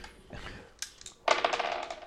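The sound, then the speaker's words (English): Dice clatter across a hard tabletop: a light click, then a loud rattling tumble of small hard knocks that fades off, with no one speaking. “You need to move the dice.”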